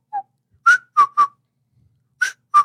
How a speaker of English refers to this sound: I'm the worst whistler, dude.